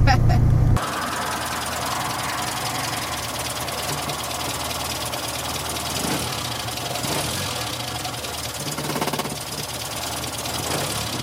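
A Morris Minor classic car engine runs steadily while the car is being driven, with a low, knocking rumble and road noise, holding an even, moderately loud level after a brief heavier thump at the start.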